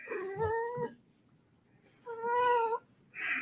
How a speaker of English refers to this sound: That was a very talkative cat. Yeah, he's got a lot to say.